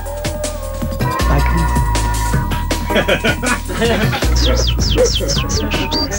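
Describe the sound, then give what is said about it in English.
A music record played on Radio 1, with a heavy, pulsing bass line, and in its second half a run of quick, high bird whistles chirps and swoops repeatedly over the beat. “Well, he ain't told us the name of the record, so he says it's bird whistling.”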